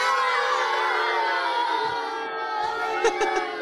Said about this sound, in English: He's getting booed by Rick's fans. Oh, man. I knew Rick's fans would be tough.